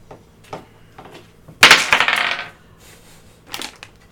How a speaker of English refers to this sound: Don't just start rolling dice, tell me.